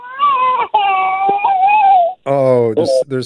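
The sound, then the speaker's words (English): A baby girl cries in loud, wavering wails, two long high-pitched cries followed by shorter, sobbing bursts with a harsher, strained edge. “If I pick her up, it'll be fine.”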